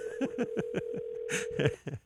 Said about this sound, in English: It's annoying, isn't it? Well, that sucks. It's like it rings every time we talk. Maybe hang up. I'm gonna just let it ring in the background.